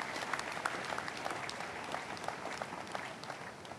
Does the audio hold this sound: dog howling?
no